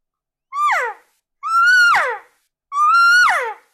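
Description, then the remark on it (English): Three loud cow elk calls blown on a game call in reply to a bull elk's bedded bugle, each a nasal, whining mew that holds a high note and then slides downward, separated by short pauses with no talking. “But before I bugle back at him, every time he answers with one of these, that kind of just a squirrely bedded bugle, I'm going to give him some cow calls.”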